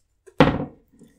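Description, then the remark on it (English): A Kahuna 1000 cricket bat drops onto the floor with one loud, hollow wooden thunk that rings briefly and fades, followed by a faint clattering settle. “Anyway, sorry, the Kahuna 1000 hit the deck there.”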